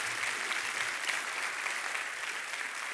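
An audience applauds steadily, a dense wash of many hands clapping at an even, sustained level throughout with no voices standing out above it.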